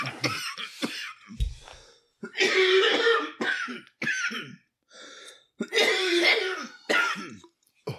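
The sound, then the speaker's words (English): A series of harsh, hoarse coughing fits, loud, with several rough hacking bursts separated by short pauses and some throat clearing, from a person smoking cannabis. “That was the horse cough.”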